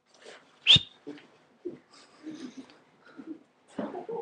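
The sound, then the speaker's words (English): A dog in the room gives one sharp, high yelp, followed by quieter snuffling and whimpering noises scattered through the rest of the moment. “Focus, focus. Not the dog.”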